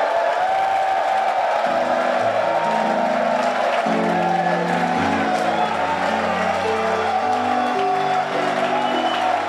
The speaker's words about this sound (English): Give the Lord a shout and a clap of it.